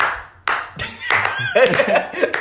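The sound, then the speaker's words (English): Three sharp hand claps ring out in quick succession as a simple beat, followed by excited voices and laughter layered over the last ones. “All it takes is three claps.”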